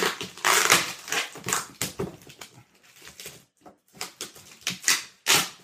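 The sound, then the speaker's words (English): A Nomadic package is torn open by hand for the first time, with repeated sharp rips and crinkling of cardboard and plastic in irregular bursts, some loud, then brief pauses. No one speaks. “And I'm opening this up right now.”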